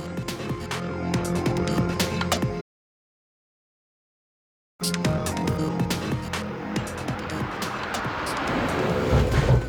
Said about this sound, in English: Barath brought his car to a skidding halt in the gravel parking lot of the Moonshot